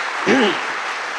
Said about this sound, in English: I didn't know I had all these applause lines. I could just stay here all night.